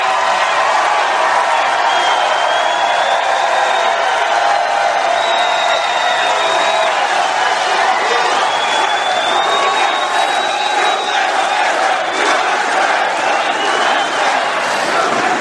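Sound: rally crowd cheering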